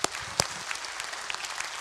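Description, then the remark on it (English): A church audience at Woodland Hills claps steadily to welcome a new member, with many overlapping hand claps forming a dense, even patter of applause, with no one speaking over it. “If you receive her, would you say amen, clap, do whatever you want, okay?”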